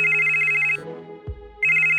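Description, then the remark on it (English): A telephone rings twice as Jeopardy calls a contestant hopeful: a loud steady electronic trill with a strong harmonic buzz, separated by a brief pause with a low thump in the gap. No one speaks. “When Jeopardy hopefuls first get the call, they might be doing any number of things.”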